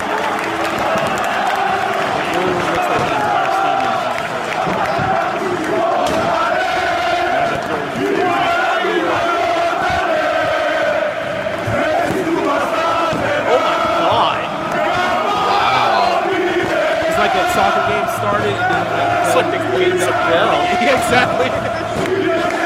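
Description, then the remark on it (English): A huge soccer stadium crowd in Greece roars and chants continuously as a team scores a goal. It is a dense wall of voices with rhythmic shouting and a steady low rumble of jumping and stomping underneath, loud throughout. “And all the jumping and stomping they do, there have been multiple soccer stadiums that have collapsed because of that crap.”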